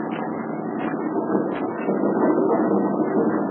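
A steady, low engine rumble from an automobile and a small armored car approaching on a winding, sand-strewn road, droning without pause and growing slightly louder partway through. No voices are heard.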